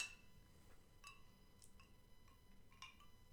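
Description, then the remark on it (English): Several light, ringing clinks of glasses tapped together in a toast to the year 2022, at uneven intervals, faint, with no one speaking over them. “And so unironically, I say here's to the year 2022 and all the potential that it holds. Yes, cheers.”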